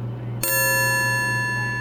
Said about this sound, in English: What was that? Sounds like that's our cue to go. The gong has been gong, as they say.